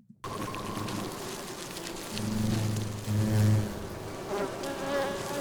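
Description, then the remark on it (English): Dense insect buzzing from giant hornets attacking European honeybees, with a giant hornet queen among them, fills the scene, with a low droning hum that swells louder in two stretches amid a busy, crackling background. No one speaks. “Let's watch this giant hornets massacre European bees, Buddha bees, and the giant hornet queen.”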